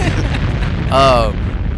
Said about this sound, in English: Explosions.